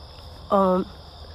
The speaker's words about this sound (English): And I hope you enjoy the crickets in the background.